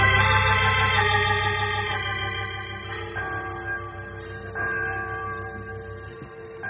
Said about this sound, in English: Oh, there goes that church bell again.